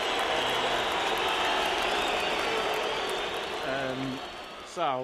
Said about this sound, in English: Have you got any sound effects for when you get it right and wrong? Oh, here we go. Okay, we've got some booing and jeering.